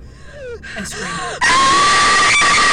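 human body sound, person screaming

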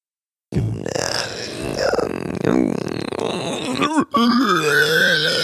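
human body sound, burp

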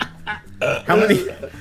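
sound effect, fart machine noise

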